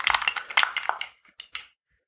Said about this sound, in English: Let's stir this up a little bit